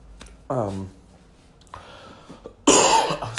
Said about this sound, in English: I'm still battling that cold. One day I will give you a podcast cough-free, I promise.